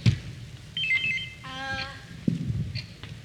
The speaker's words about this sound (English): Push your buzzer.